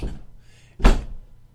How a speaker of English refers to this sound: He walks in. The door, it's very dark in there. The door closes behind him.